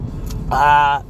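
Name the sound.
car driving in traffic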